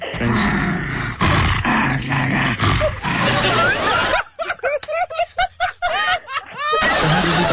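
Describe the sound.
A dog named Prince, owned by a man, growls and grumbles in a rapid string of throaty, rising-and-falling vocal bursts, pronouncing a word in his throat so it sounds almost like a spoken name, following a brief stretch of noisy talk.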